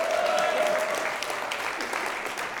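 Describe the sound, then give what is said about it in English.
An in-house audience claps and cheers steadily toward a camera for online viewers, a dense, even wash of applause throughout, with a single sustained whoop rising above it at the start. “Turn around, look at that camera, and make some noise.”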